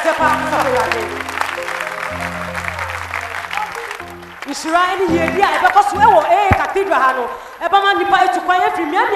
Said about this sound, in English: Oh, clap your hands for the Lord.